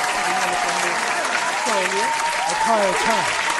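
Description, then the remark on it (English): A steady wash of applause from an audience, dense and even throughout, with a few voices calling out and murmuring over the clapping. “So, we are going to clap.”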